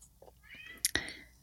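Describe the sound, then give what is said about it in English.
A male cat behind a door meows, slightly muffled, with a couple of quick mewing calls in close succession, moderately loud, trying to get its owner's attention. “It's my cat, if you can't hear. He's behind the door and he's trying to get my attention.”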